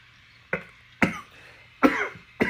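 A raspy smoker's cough in four harsh bursts, spaced unevenly about half a second apart, with a wet, rough edge and no talking in between.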